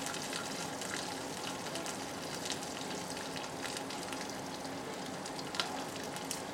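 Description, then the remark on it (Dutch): Steady crackling sizzle of food frying in a pan as its moisture cooks out, with bubbling and sharp little pops scattered throughout, continuous with no voices. “Nou, op een gegeven moment ga je zien dat de bubbels verdwijnen en dan weet je gewoon het vocht is er ook uit.”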